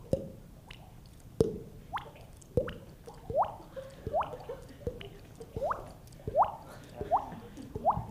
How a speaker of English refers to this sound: You push your tongue forward and it pushes the water out.